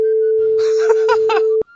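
A loud, steady censor beep holds one mid-pitched tone for about a second and a half, muffled voices and laughter faintly underneath, then cuts off abruptly.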